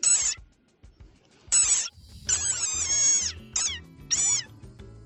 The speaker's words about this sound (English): the males come out at night and call for the females. The males sometimes call in choruses, where one male calls and all the others call after. Their calls supposedly sound a bit like a dog's squeaky toy. Let's put it to the test. Here's a rain frog.